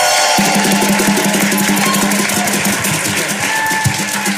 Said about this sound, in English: Can we give her a round of applause?